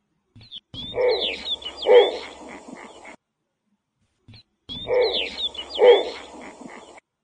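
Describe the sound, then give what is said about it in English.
A snowy owl gives a harsh, barking call in two bursts separated by a short silence, each with a pair of loud, raspy barks over thin, high chirping notes. “And since it is a little bit different, here's a snowy owl barking sound.”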